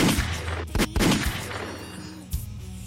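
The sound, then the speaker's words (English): Several sharp, booming gunshot-like blasts punctuate a dense, loud rock track, with a couple of clustered hits early and another burst near the end. “Gunshots is crazy.”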